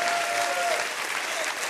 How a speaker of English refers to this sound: Clap your hands and rejoice to that in the name of the Lord.